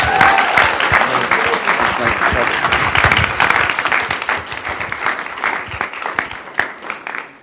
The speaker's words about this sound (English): Really great stuff from you guys. Let's give them a massive round of applause. Thank you so much.